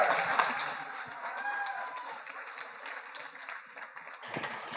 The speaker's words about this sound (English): So if you could, as he's coming up, can we just give Pastor Doug and Peggy a round of applause?